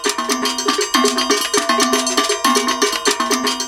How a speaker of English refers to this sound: Well, I started with caca first, but when I reached a certain level with caca, there was gangbo, which is played with bells, just bells.